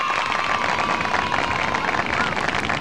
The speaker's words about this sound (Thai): ปรบมือกัน